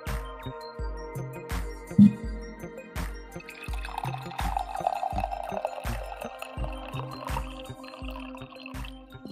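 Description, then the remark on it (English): Coffee pours steadily into a cup, a close, trickling gurgle that climbs in pitch as the cup fills, with a soft rhythmic beat of background music underneath and no talking. “I do think we need another coffee pour, though.”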